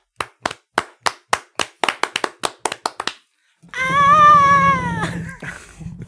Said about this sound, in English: Go ahead. I'll let you start that slow clap.